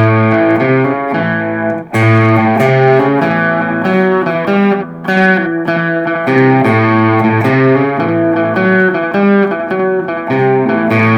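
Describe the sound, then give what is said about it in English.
An electric guitar on the bridge pickup plays a driving rockabilly shuffle riff in A: a one-finger A shape with the open A string ringing, a variation of an A shuffle built on a hammer-on. Bright and slightly overdriven, with a steady repeating bass-string pattern and chord stabs, loud and continuous with no talking. “Let's kick on the bridge, the bridge pickup, and show you that other riff.”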